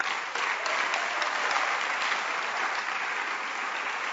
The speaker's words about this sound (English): clap your hands for him.